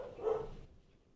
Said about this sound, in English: Sorry, those were my dogs.